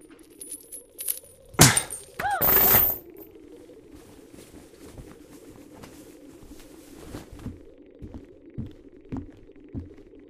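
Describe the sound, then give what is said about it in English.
Metal handcuffs shatter with a sharp metallic crack and a brief ringing clatter, then a low steady hum continues with faint scattered clicks and no one speaking. “One much sturdier than the handcuffs I just shattered.”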